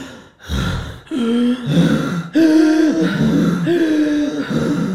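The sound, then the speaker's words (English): Heavy, ragged breathing in pitch darkness, a run of loud voiced gasps and groaning exhales repeating in an uneven rhythm with no talking. “It was pitch black, and all I could hear was heavy breathing.”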